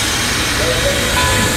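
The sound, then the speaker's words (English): A train sound effect: a steady, fairly loud rumble and hiss of rolling rail cars, with a faint high whine drifting through the middle of the short stretch. “All aboard for the Metro Express!”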